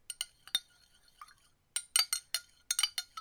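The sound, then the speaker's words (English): A spoon clinks repeatedly against a glass while stirring a tequila drink, a series of bright, high-pitched taps in an irregular rhythm, with a brief pause before the clinking resumes more rapidly. “I'm stirring a drink if anyone's confused.”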